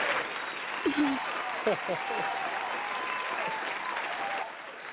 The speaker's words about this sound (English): All right. So all those persons that have supported you, we're going to give them an applause and that they do continue to pick you up with all your projects.